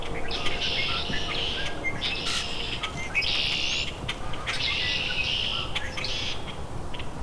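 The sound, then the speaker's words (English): A noisy chorus of common grackles and red-winged blackbirds, with harsh, buzzy calls and squeaky chatter overlapping continuously over steady outdoor background noise. “Common grackles, red-winged blackbirds.”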